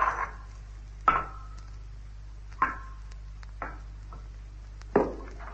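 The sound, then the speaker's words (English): A loose rock fragment dislodged from the edge of a circular pit knocks and clatters in five sharp, irregularly spaced hits, each with a brief ringing tail, the last a fuller splash-like impact in water, over a low steady hum. “There's a loose fragment of rock just inside the edge. If only I can dislodge it.”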